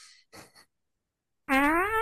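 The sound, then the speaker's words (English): A loud, buzzy fart sound effect blares near the end, sustained and wavering in pitch, after a couple of brief, faint noises and a short silence. “Yeah, I play more fart noises”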